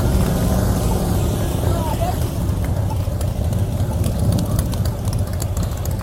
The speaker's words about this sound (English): Here comes the motorcycles.